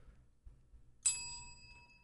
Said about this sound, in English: Do you want to press the bell?